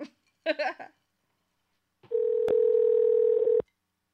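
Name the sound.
telephone dialing tones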